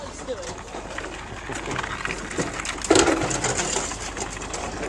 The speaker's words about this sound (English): People are heading right down to the wharf to go help load the traps. And we got another one coming in. We'll be going on the far side of Smutty Nose. The sounds of traps being brought down.